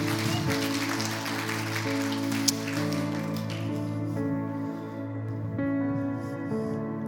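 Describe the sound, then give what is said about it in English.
An audience at Convergence claps steadily over sustained keyboard chords, the clapping dense and crackly at first, then thinning out while the held musical tones carry on underneath. “You can clap louder.”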